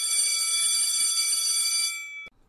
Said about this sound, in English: First period. Ring-a-ding-ding. School bell ring.